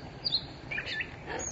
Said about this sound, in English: There, did you hear that? Peter, Peter. That's a tufted titmouse.